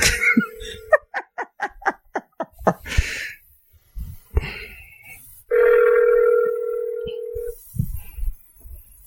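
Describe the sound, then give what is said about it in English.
A phone's ringing tone from an outgoing call buzzes steadily, once briefly at the start and again for about two seconds, with bursts of giggling laughter and some murmuring in between. “It's ringing.”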